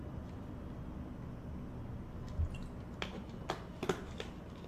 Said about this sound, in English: Excuse me while I have another drink of water.